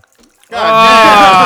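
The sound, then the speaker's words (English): After a moment of near silence, liquor starts being poured out steadily, a loud continuous gush with a gurgling, ringing tone that holds through to the end. “pouring out liquor to the great Hugh Hefner”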